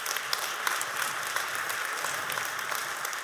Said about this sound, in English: So here's where we're at. Yeah, you can clap. It's a pretty good idea.